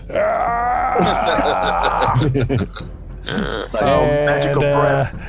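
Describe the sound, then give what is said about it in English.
A voice imitates the roar of a large skeleton, its bones held together with mud and muck, blasting out of an exploding stone sarcophagus: two long, loud, gravelly groaning bellows with a choppy, sputtering stretch between them, harsh and throaty throughout. “The sarcophagus, the crack erupts, and the sarcophagus explodes in a hail of stone, and a large skeleton may bones being held together with mud and muck blasts out of the thing and roars magically, of course, because it doesn't have lungs.”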